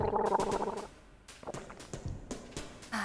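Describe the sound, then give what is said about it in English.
Wine sloshing and gurgling in a mouth as someone tastes it, a wet bubbly swish for nearly a second followed by softer smacking and slurping sounds, fairly quiet, with no talking. “If your wine smells fine, or if you're not quite sure yet, go ahead and take a sip. Swish it around in your mouth.”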